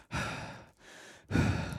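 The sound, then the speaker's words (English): A person imitates the heavy, aggravated breathing someone does between pauses while ranting: three loud, forceful breaths, a long exhale, a quieter inhale, then another strong exhale, with no speech. “When you rant, you do some like heavy breathing between like your pauses with your pauses and stuff, and you can hear him.”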